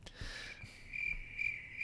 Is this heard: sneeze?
no